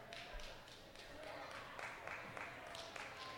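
An audience of thousands applauds to vote on an applause-o-meter, with a steady, dense patter of clapping that holds for about three seconds. It sounds fairly soft and even, without any sharp peaks.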